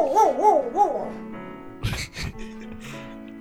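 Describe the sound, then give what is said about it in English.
A dog in a restaurant whines in wavering, rising and falling tones, followed by two short, low barks, with a faint murmur of background noise. “You hear that? This is a dog-friendly restaurant.”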